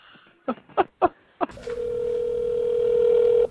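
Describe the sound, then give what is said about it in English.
A phone rings for an incoming call: four quick clicking taps, then a single long, steady electronic tone that holds at a mid pitch for about two seconds before cutting off. “I felt my pocket buzzing, and I just had it. The hallway. Oh, my phone.”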